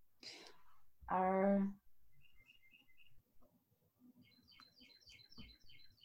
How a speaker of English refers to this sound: Oh, there's birds. Yeah. It's springtime.